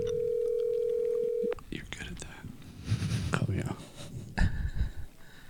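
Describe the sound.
A steady ringback tone hums on the line of an outgoing phone call for about a second and a half, then cuts off, followed by quiet whispering and soft breathy talk.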